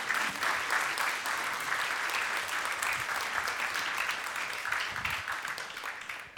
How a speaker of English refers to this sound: Thank you guys so much for being with us today. You guys give them a round of applause for joining us.